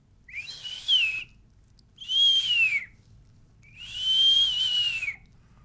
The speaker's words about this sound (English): It's whistling. There's whistling. Ghoulish. Some weird noises that you're like, well, that can't be animal.